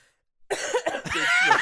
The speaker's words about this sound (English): That's the one cough I'm not going to edit out. Because there's context.